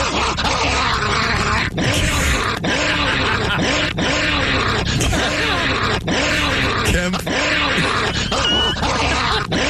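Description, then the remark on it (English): A person barks and growls like a dog, loud, in a continuous stream of rough, gravelly snarls and short yelping bursts with no pauses. “who Kempf told police barked at him”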